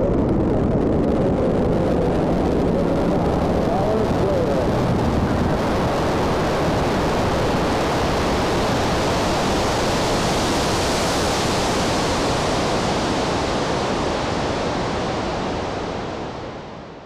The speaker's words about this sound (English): Sequence start. 6, 5, 4, 3, 2, 1, 0. All engine running. Liftoff. We have a liftoff. 32 minutes past the hour. Liftoff on Apollo 11.